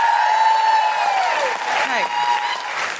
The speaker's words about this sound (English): big round of applause